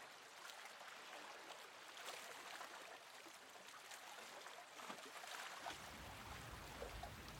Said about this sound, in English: As we bring our attention to the present moment, we begin to hear the sound of the very gentle waves coming from the shore.